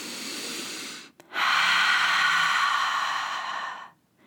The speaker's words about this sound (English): You can do this literally right now. Let's do it together. Let's take in a nice deep breath.